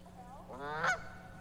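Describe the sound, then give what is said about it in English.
A single Canada goose honk, a loud, rising nasal call lasting under a second, with a faint low hum underneath and no talking. “A goose. A Canada goose.”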